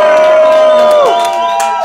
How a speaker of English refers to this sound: Make some noise for yourself, guys. The first studio audience. Come on, y'all can make some noise. Make some more noise. Come on.